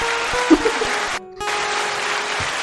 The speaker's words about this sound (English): It's the highest applause ever ever given out by this podcast.